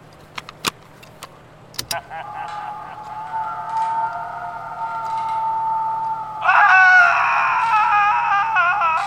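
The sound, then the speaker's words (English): A few sharp clicks, then a long, high, wavering scream from a Halloween sound-effects mixtape that suddenly grows louder and shriller partway through and keeps going to the end, with no talking. “I heard screaming. That was just my never-fail Halloween mixtape.”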